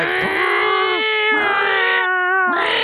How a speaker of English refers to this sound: It's an ambulance coming by. Yeah, like a Doppler effect. Oh, it's bad.